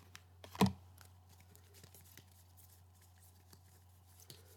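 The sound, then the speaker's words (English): A deck of cards is shuffled: a brief, sharp burst of rapid papery riffling near the start, then scattered faint clicks and taps over a steady low hum, with no talking. “Let's shuffle up the cards.”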